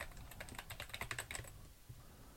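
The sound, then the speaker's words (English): Rapid typing on a computer keyboard, entering an OpenID URL on a registration page, a quick run of crisp key clicks for about a second and a half, then tapering off into quiet. “All right, let's give this a try by going to our registration page and typing in an OpenID URL.”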